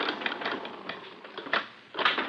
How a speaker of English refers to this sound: As they read the list of tenants' names on the wall, a creaky elevator halts at the first floor.